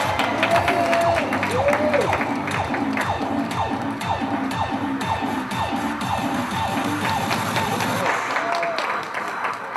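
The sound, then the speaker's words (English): A crowd at a fashion show applauds steadily for about ten seconds, a dense, even wash of clapping with scattered cheers and shouts mixed in, holding at a fairly loud level throughout. “Give it up for Mayfair Moon.”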